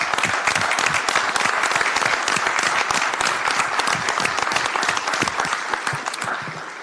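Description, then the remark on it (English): A crowd at a city council meeting bursts into sustained applause honoring members of the Sacramento Fire Department, dense rapid clapping at a steady loud level for about seven seconds, tapering slightly at the end, with no talking over it. “And so I think that deserves a round of applause.”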